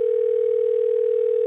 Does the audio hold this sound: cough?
no